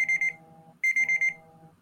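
A debate timer alarm going off in two bursts of rapid, high-pitched electronic beeps, about four or five quick pulses each, over a low steady hum, with no talking.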